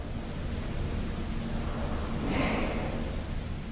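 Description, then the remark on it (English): A steady, airy hiss fills the whole recording, with a brief brighter swell about two-thirds through that sounds like a soft breathy exhale, and no voices. “Almost sounds like a hiss.”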